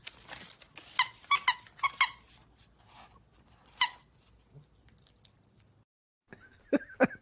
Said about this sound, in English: So wait, there's a dog attacking squirrels? That's what it looked like to me.